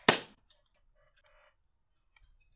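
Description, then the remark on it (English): A single sharp, loud hand clap, made to sync a recording, rings out and fades quickly, followed by two much fainter clicks spaced about a second apart. No one speaks. “I clapped.”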